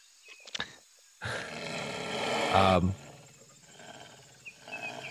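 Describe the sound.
A wounded animal, as something is being removed from it, lets out one loud, rough, rasping growl lasting under two seconds, preceded by a couple of sharp clicks and followed by faint low rumbling.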